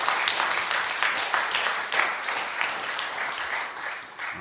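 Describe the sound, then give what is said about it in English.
A live audience applauds steadily for about four seconds, a dense wash of many hands clapping at once, fairly loud with small swells, tapering slightly at the end. “Let's clap it up, man.”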